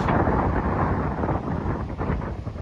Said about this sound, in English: For those of you hearing the wind, it's just an observer's video of the truck driving through the surf in Florida.